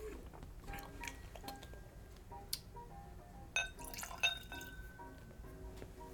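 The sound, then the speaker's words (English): A 43% (86 proof) whiskey being swirled in a glass, with soft liquid sloshing, small drips and a few light glassy clinks, quiet with no voices. “Okay, give this a little spin in the glass.”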